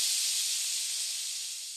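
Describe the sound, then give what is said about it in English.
A steady, high-pitched hiss of air escaping from punctured tyres, continuous and fairly loud, tapering off slightly toward the end with no voices. “Won't be able to come after us with punctured tyres.”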